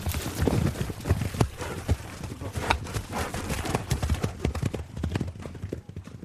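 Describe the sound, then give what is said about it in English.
A horse's hooves clip-clop in an uneven, shifting rhythm, fairly loud, as the animal moves about restlessly rather than standing still. “You can see the way the horse won't stand still.”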